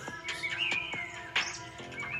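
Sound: birds chirping outdoors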